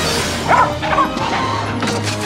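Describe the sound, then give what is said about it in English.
A dog barks a couple of times, two short yips about half a second apart, over steady background noise, followed by a brief clattering rustle near the end. “That dog's letting the animals free.”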